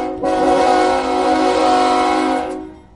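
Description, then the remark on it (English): A loud, sustained train horn blast with rich stacked harmonic tones, holding steady for about two seconds before cutting off abruptly, heard alone with no talking. “Pain Train”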